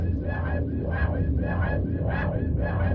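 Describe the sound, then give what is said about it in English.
Music from Plaza Desventura, an augmented reality artwork set on footbridges in Toronto and Mexico City: dense, droning, with grinding, screechy metallic tones evoking rusted cogs and baby birds nested in abandoned spaces, swelling and fading in a steady repeating pulse over a heavy rumbling low end. “The music you're hearing is from the project, created to be reminiscent of the screeching of rusted cogs, as well as something more organic, like the sound of baby birds nested inside abandoned spaces.”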